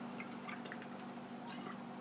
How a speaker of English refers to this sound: Now I'm just going to take one moment here and take a sip of my water.